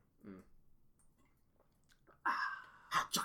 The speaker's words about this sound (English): here's another question, as I take a drink of water.